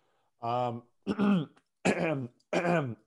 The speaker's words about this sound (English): am I clearing my throat a lot just to see if I can think of something on the spot? Yes, I sure am.